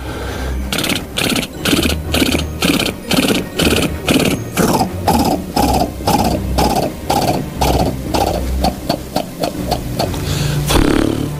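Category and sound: animal, horses' hooves clip-clopping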